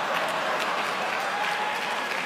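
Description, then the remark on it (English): Lukewarm audience applause, a steady patter of many hands clapping at a moderate level for a couple of seconds, with no cheers or voices standing out. “You're going to get lukewarm applause at USC for some of the kids here.”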